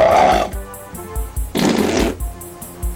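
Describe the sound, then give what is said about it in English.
Two loud, sputtering fart sound effects made by creatures in a production's Foley, a short one at the start and another a moment later, with soft low thumps pulsing in between and no talking. “He put There's farting like two in. Fart sounds.”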